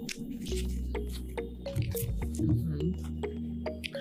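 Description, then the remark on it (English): A person drinks water: wet sips and swallows with small clicks and squishy liquid noises over a low, steady rumble, lasting a few seconds with no talking. “Oh, I have some dry mouth, bro. I need some water.”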